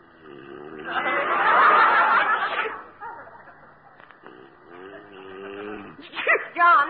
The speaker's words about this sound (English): Gesundheit. Thanks.